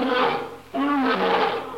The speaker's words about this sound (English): Boy, that lion sure sounds hungry.